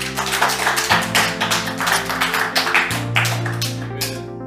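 Hand clapping in quick, uneven bursts, loud and steady for several seconds over sustained low musical tones, then tapering off near the end.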